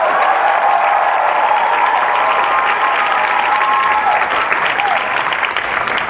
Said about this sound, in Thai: ปรบมือให้คนมีความหวังอีกที